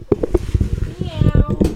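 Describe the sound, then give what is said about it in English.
A person's voice mimics a cat's meow, a short, drawn-out tonal cry with a gliding pitch. It is fairly loud, with some voice sounds around it. “Friendly little cat.”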